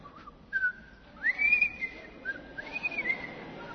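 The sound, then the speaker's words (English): Two people whistle a bright, jaunty TV show theme tune together, its clear notes sliding up and down in a lilting melody, fairly loud with no talking. “So we whistled it together.”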